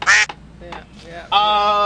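A duck quacks twice, loud: a short, raspy burst first, then after a brief pause a longer, drawn-out nasal quack.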